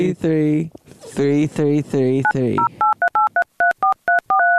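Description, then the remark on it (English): A voice talks briefly, then a quick run of about eight to nine touch-tone keypad beeps as a phone number is dialed, each a short clear dual-pitched tone separated by tiny gaps, loud. “You would think I'd know his phone number by now, wouldn't you? What's his number?”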